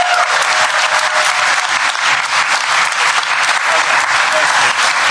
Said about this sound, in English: All right, please, a round of applause for Only Child by John Hodgman.